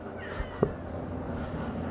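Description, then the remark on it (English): A female pet cat gives one short meow, a quick chirp-like call that rises briefly above a steady low background hum, with no talking around it. “I think she meowed and said, yes, that was correct.”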